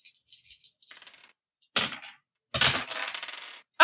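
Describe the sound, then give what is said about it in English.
Dice clatter and tumble across a hard tabletop in several separate rolls, a busy rattle of small plastic knocks with brief pauses between throws and no talking, as players roll sanity checks in a tabletop game. “Everybody can roll a sanity check.”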